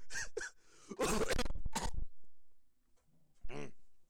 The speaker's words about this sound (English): Every time I laugh, I start coughing.